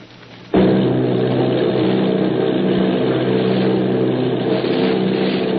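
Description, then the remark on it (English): Loud, steady droning of the engines of Army bombing plane V-843 and a group of 8 bombers off Bayonne, New Jersey, kicks in abruptly after a brief quieter moment and holds at a constant roar, low humming tones running throughout with no voices. “Army bombing plane V-843 off Bayonne, New Jersey.”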